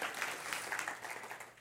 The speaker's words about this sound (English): Don't applaud me. Applaud her.